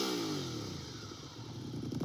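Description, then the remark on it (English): A twin-cylinder motorcycle engine with its stock exhaust idles and revs with a steady, throaty pulsing, its pitch sliding downward then rising again, continuous throughout. “So it sounds like a twin.”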